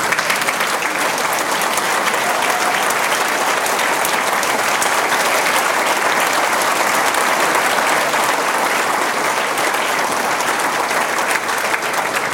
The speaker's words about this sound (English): Well, I would just ask the entire support staff if they'll stand up, and we'll all give them a round of applause for the job they've done.